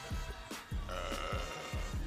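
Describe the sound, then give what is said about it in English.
Loud, drawn-out burping, a rough throaty belch with several gulping dips in pitch as it rolls on for about two seconds, no talking over it. “And you burp for that. Loudly.”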